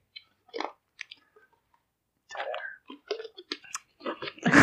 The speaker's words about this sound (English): We all took a sip of our water.